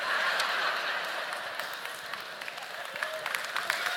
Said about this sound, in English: Yes, you can clap for that author.